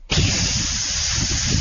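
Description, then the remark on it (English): A voice imitates an engine fuel injector spraying fuel at full throttle: one loud, steady hiss that starts abruptly and holds evenly for over a second and a half, alone. “So it says to the injector, give me this kind of spray.”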